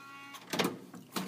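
A door being opened: a low hum, then a loud mechanical scraping burst and a second grinding rush a moment later. No voices.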